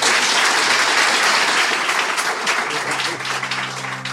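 Sustained audience applause for an interviewed guest, a dense wash of many hands clapping at a steady, fairly loud level, tapering slightly near the end as a low musical tone begins underneath.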